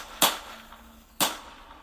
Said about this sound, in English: He got into an argument with someone he barely even knew. Out of nowhere, three gunshots went off.